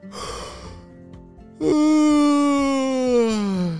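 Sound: imitated yawn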